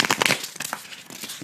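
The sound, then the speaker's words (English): A new deck of cards, not yet broken in, being shuffled for the first time: a quick flurry of papery riffling and crackling, dense at first and then thinning into a few scattered soft flicks, with no voices. “So I'll give them a shuffle here, and then we can pull one as our advice for the week ahead.”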